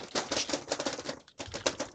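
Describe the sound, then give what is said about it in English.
Rapid, continuous clacking of someone typing on a mechanical keyboard, dense overlapping keystrokes with a brief pause near the middle before the furious typing resumes, fairly loud. “On their mechanical keyboards, right? Just going.”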